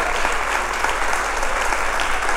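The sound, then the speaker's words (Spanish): Loud, sustained applause from a large crowd, dense continuous clapping with no pauses and no voices standing out above it, given as applause for the Lord during a sermon. “Si ese aplauso es para el Señor, dáselo fuerte.”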